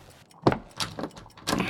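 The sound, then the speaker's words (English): Locked desk drawers rattle as they're tugged: four short, clattering jolts at uneven intervals, fairly loud, with no voices. “The drawers are locked.”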